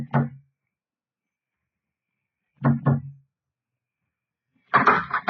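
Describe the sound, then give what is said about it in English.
Soft, muffled, discreet knocks on the wooden door of cabin B-24 aboard a ship at 2:30, by a first officer with a watchman: a single rap, a pause, then two quick raps, followed by a brief scraping rattle. “Knocked discreetly on the door to B-24.”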